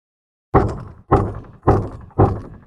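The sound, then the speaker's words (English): Four heavy, evenly spaced loud knocks on an alley door, each a booming thud with a short decay, after a brief silence. “The chef sat up with a jolt at the sound of a loud knock at the alley door below.”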